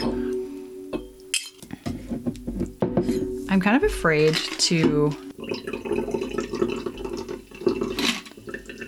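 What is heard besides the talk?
ice clinking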